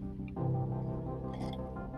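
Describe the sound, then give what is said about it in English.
A quick, wet sip of tea, a soft slurp followed by a faint swallow and moist mouth sounds over a low steady hum, with no talking. “I'm going to take another sip of tea here because my voice is like on the edge here.”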